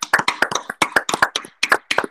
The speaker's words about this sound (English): I just want to give a clap for Aaron Judge for that. Incredible feat.